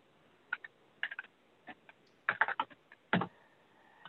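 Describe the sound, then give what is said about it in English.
Irregular bursts of sharp clicks from keys being typed on a computer keyboard as someone types a message in a chat, fairly quiet, with short pauses between clusters of keystrokes and no voices. “I am typing this in the chat if anybody want to download it or copy it.”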